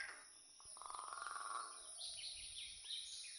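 A bird call played from a bird app over a small phone speaker: a quick buzzy trill followed by a few thin, high chirps, fairly faint against a steady hiss, with no one talking.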